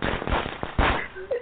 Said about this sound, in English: Yep, that's your your firecracker sound effect. There you go.